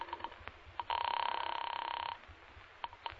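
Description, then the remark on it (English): A single trilling telephone ring on a placed call, lasting just over a second with a rapid, buzzy pulse, framed by a few soft clicks and handling noises before and after. “So, with my arms still around her, I reached for the phone.”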